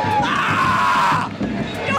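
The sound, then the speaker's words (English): A huge crowd of about 70,000 fans at a Hawkeyes home game at Kinnick Field roars continuously as the team comes out of the tunnel, a dense wall of cheering and screaming voices with shrill shouts riding on top, loud and unbroken for the whole stretch. “As soon as they come out of the tunnel, there's such a roar from the crowd.”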